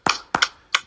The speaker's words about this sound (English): I've just realised it's 8 o'clock. I could hear the clapping there. You're right, we should hear the NHS clapping.